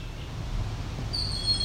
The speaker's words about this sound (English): A brief video of this bird. At this point, I will say is a young Cooper's hawk. Very dark bird.